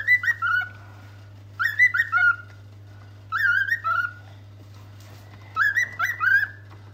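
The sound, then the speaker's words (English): A male pet bird whistles and chatters in four close, bright bursts of warbling, rising-and-falling notes, each about a second long, separated by short pauses, over a steady low hum. “It's almost like the bird is trying to kind of copy or talk to her.”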